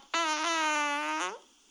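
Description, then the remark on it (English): A single sustained real human fart, loud, with a steady buzzy tone holding for about a second before cutting off abruptly. No talking accompanies it. “I'm hearing air before this fart.”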